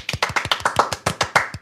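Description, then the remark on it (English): Quick, steady hand clapping as a round of applause for Star Wars writer Claudia Gray, around a dozen sharp claps in a brisk even rhythm, fairly loud and with no talking over it. “Dude, Claudia Gray, round of applause to Claudia Gray.”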